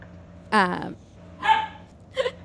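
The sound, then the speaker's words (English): A dog barks three times at uneven intervals, each bark short and fairly loud against a quiet background, with the last one a bit sharper and higher. “And on my end now, the dog is.”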